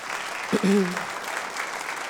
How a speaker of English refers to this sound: I know that I have one of my relatives from those nations in the audience, so we're gonna clap for that person.